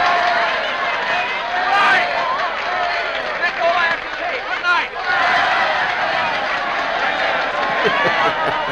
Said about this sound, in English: The crowd rushes him on the stage. He's like, whoa.